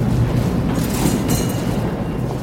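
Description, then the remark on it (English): A subway train rumbles loudly and steadily through a Brooklyn subway station, a deep continuous roar with brief metallic hissing rising over it partway through. No voices. “meets me at a Brooklyn subway station.”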